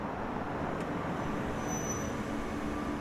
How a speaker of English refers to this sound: Suddenly, there's a car coming down the driveway.